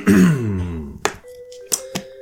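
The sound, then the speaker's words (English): Someone clears their throat once, loudly, with a voiced, descending rasp. A few sharp clicks and a faint steady hum follow. “I really need to clear my throat.”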